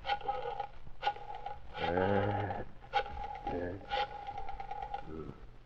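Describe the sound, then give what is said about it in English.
A telephone being dialed as the character Keesby makes a telephone call: a series of sharp clicks and short tonal bursts, roughly one per second, with a brief louder buzzing tone partway through and no talking. “Then Keesby made a telephone call.”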